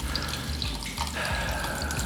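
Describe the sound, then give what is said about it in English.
Steady rushing and splashing of water pouring in on deck 15, already at ankle height and rising fast, a continuous wash with faint bubbling gurgles and no voices. “Can you describe to me the amount of water that's coming in?”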